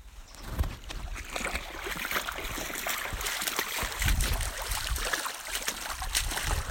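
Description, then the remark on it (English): Steady sloshing and splashing of water as a person walks down the center of a shallow creek on a trail in the morning, at one of 17 creek crossings, with irregular splashy steps over a constant rush of moving water. No one speaks. “You know, just walking down the center of a creek.”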